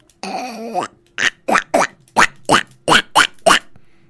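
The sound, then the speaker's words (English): A person imitates a duck: one drawn-out, buzzy nasal call, then a quick run of about eight short, sharp quacks in a steady rhythm, fairly loud with no other talking. “That's a duck.”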